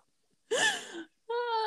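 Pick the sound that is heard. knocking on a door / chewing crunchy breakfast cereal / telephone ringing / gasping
gasping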